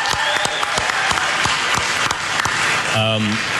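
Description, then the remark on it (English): An audience breaks into steady applause for a partnership with the food bank Philabundance, which feeds 135,000 people a week, many hands clapping in a dense, crackling wash with a few sharper individual claps standing out, and a brief voiced sound rising near the end. “Yeah, clap for that.”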